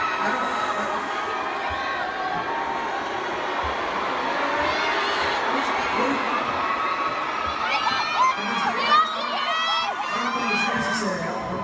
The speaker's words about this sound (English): But the screaming during these breaks has got to stop. Please and thank you.